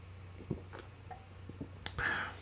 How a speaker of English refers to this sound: I'm going to take another sip of this zero sugar Coca-Cola, right to the mouth.